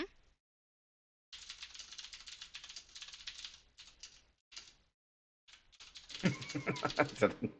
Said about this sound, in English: The intense typing.